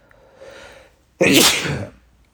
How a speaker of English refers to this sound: Excuse me. I don't, you know, say excuse me after a sneeze, but I don't know. I felt like it needed to be acknowledged. I had to beg your pardon for my sneeze.